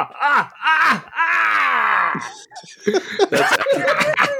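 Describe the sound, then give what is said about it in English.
A voice imitates a COVID hacking cough: short voiced bursts, then a long groaning, falling wheeze, followed by a cluster of rough, raspy coughing bursts. No words are spoken. “That's a COVID hacking cough.”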